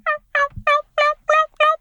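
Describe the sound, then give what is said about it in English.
A person imitates a turkey's chirp call: six short, bright, tonal chirps in a steady, evenly spaced series, fairly loud, with no talking. “I can also do a pretty decent little chirp.”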